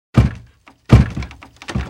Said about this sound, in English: But the knocking started again, more loudly this time, waking his grandmother.